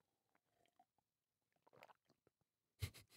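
Wet, squelching mouth sounds as a man tastes one of three bottled waters (Mount Franklin, Fiji, Woolies store brand) with eyes closed, chewing it like wine: scattered soft clicks then a gurgly swish of liquid, ending in a louder burst of sloshing as water is swirled around the mouth.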